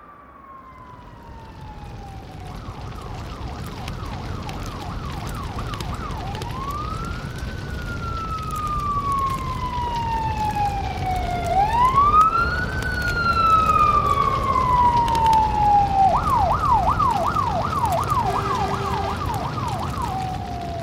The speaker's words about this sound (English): Being woken up by sirens became frequent occurrences for residents who already moved into these neighborhoods.